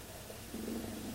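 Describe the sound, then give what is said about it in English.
A low, rumbling jaguar purr sets in about halfway through and continues steadily to the end, moderately loud over a faint background hum. “Purring.”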